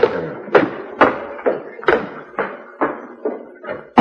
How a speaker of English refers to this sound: What are you doing there? I could hear you clearing the other office, going through the files.